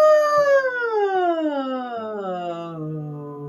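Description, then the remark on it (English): A single sustained voice glides smoothly and steadily downward in pitch for a few seconds, a wordless siren-like slide done as a voice warm-up exercise, with rich harmonics and even, moderate loudness. “And as you're doing that, notice if you feel the frequency as you come down, drop in the body, and then go back up as the pitch of your voice goes up. And it doesn't matter how high or low you go here, it can be a short siren.”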